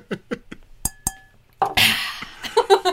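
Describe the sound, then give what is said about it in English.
Glasses clink together in a toast, two quick bright taps with a short ringing tone, followed by a burst of noisy shuffling and muffled vocal sounds. “Let me just take a sip of mine. Clink.”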